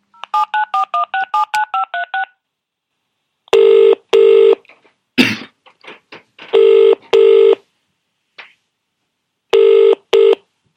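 A quick run of about a dozen touch-tone dialing beeps, then a loud double-pulse ringing tone repeating three times with short gaps and a few faint clicks between rings.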